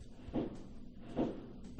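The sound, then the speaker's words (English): Three muffled, low thumping booms of fireworks going off outdoors as festivities begin, spaced roughly a second apart, each a soft dull burst over a faint steady background hiss. “Can you hear that? Fireworks, everybody.”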